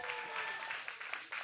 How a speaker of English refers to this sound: Keep clapping. That was amazing.